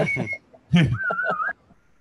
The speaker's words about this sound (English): you're really good at whistling. Do that again.